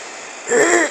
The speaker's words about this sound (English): I didn't feel like breathing today because... excuse me, I'm clearing my throat.